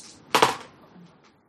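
Dice are rolled: a sharp clatter bursts out and rattles briefly, followed by a couple of faint little ticks as they settle. No one speaks.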